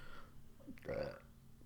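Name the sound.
burp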